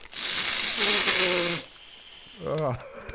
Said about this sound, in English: But here we go. I'm just gonna blow my nose on a legal pad.